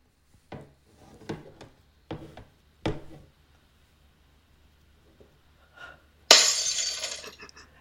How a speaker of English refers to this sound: Look out, sir, you've smashed your bloody glass. Yeah, well, I'm sorry, I had to go and fetch the glass because it took so long to fucking load on the iPad. But I have dropped it.